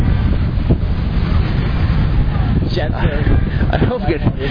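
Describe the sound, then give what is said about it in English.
A heavy, continuous roar of surf pounding onto a beach, loud, buffeted by strong wind rumble, with a voice speaking over it toward the end. “Okay, that's not even the wedge if you heard that wave.”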